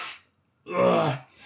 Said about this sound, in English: Sorry, I've got to blow my nose real quick. Blow break.